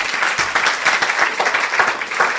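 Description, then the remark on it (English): An audience applauds steadily for a couple of seconds for a woman just awarded the 2012 Translation Prize by the National Yiddish Book Center, a dense wash of many hands clapping at once, fairly loud, with no voices over it. “So I think you can clap for that.”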